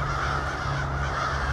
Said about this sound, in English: Crows will gather by the thousands to sleep together at night in the winter. This is only in the winter.